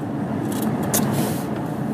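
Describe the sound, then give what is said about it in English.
Steady, dense road rumble from a car cruising at freeway speed as it moves into another lane to get off the freeway, with a brief airy whoosh partway through. The noise stays constant, with no voices. “Getting into another lane, getting off the freeway”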